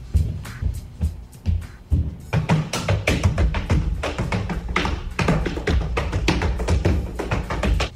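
Feet stomping on a ceiling by a guy held upside down by his friend: scattered heavy thumps at first, then a loud, fast, almost continuous flurry of pounding beats that keeps going to the end, with no voices.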